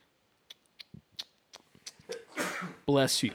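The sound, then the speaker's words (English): A few soft clicks and breathy sounds build into a sharp, loud sneeze near the end: a rushing intake followed by a voiced, noisy burst. “Bless you.”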